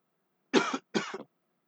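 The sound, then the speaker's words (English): Two close, loud coughs in quick succession, each a short harsh burst about a quarter second long, separated by a brief pause and surrounded by silence. “Sorry, I'm coughing a lot.”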